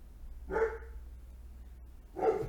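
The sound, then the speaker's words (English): A dog named Hercules barks twice, with a long pause between the two barks. Both are moderately loud, over a low steady background hum. “Huh, he's probably, like, barking at a cat or something.”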